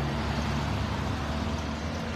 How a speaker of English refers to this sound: Folks, and it's very busy traffic. Police are advising people to avoid this area of 146.